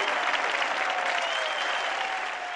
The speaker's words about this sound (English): You are an influencer. I'll give you a little bit of a clap for that.